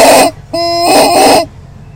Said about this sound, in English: Oh, we have more commentary from the chicken. More commentary from the chicken.